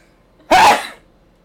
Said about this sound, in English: Bless you. And now they're making me sneeze.